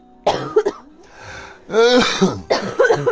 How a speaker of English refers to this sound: I'm coughing so much, you made me cough.